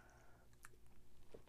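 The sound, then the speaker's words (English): A quiet sip of a cocktail from a glass, with soft wet mouth clicks and a swallow over a low steady hum. No one speaks. “Sorry, I had to take a sip of my cocktail before I get into this one.”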